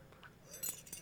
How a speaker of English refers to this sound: well, let me get my keys out. Oh, you got sin? Okay, hang on a second. Let me get my keys.